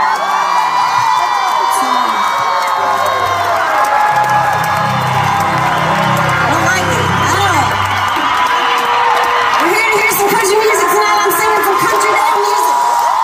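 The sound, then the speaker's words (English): A large concert crowd cheers and whoops continuously right after the performer stopped the song to scold fans taking selfies, a loud, dense wash of overlapping shouts and high-pitched screams with a few low bellowing voices rising and falling in the middle. “So in this clip, which immediately was in the moment of her doing it, people were cheering.”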